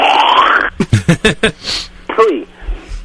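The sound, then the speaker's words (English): A raspy, hissing throat clear is followed by a quick run of four or five short, gruff grunting bursts and one final voiced huff. It is fairly loud, with no words spoken. “Let me clear my throat.”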